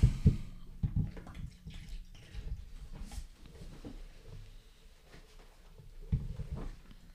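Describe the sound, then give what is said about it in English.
Beer glugs and splashes as it is poured into a metal flower watering pot, a continuous pour with irregular gurgling bursts and drips, loudest at the start and again near the end. “He's pouring a beer into a flower watering pot for the listeners.”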